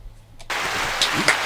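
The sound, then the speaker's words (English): After a brief moment of quiet, a recorded applause sound effect played on cue kicks in abruptly, a dense, steady wash of many hands clapping that stays loud to the end. “Hold for applause.”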